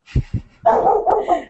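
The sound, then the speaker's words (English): A dog barks: two short, sharp woofs followed by a longer run of rough, overlapping barks and yelps, loud and alone with no talking. “Even the dogs liked it.”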